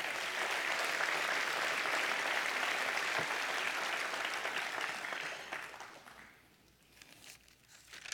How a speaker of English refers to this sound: Now that deserves an applause right there.